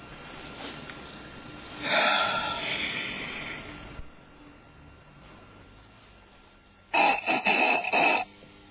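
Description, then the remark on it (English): Two loud, harsh nasal snorts made to clear the sinuses: a long rasping pull, then after a pause a sharper burst of rapid, choppy sniffs, with quiet background noise between them. “Clear my sinuses.”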